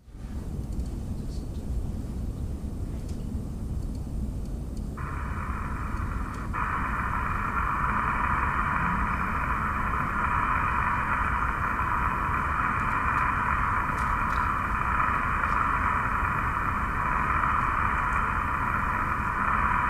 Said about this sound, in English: And this one, I really like the concept. He took a contact microphone and froze it into some water overnight, and then recorded the sound of the snow falling onto the ice.